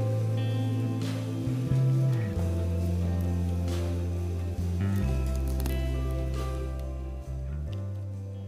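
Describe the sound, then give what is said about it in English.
Many small plastic communion cups crackle and pop open in scattered, irregular bursts during a church communion service, layered over steady, sustained low musical tones, with no one speaking. “I love the sound of them crackling open across the room.”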